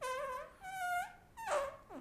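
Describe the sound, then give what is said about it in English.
A series of slow arm farts: three or four drawn-out, squeaky, buzzing tones with wavering pitch, each lasting under half a second, separated by short pauses, with no talking. “You know what I used to be really good at doing is this. The like arm slow, farts.”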